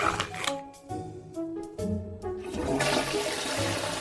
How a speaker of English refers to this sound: He's trying to flush without touching it.